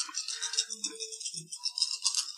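Dice rattle and clatter as a player rolls them, a steady, bright, dense stream of small clicks for a couple of seconds, fairly quiet, with no voices.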